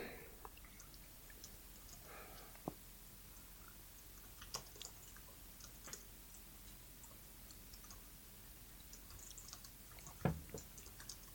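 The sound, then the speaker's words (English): Faint, scattered clicks and taps of keyboard typing, irregular and unhurried, with one slightly louder knock near the end and no voices. “You're just typing, please introduce yourself.”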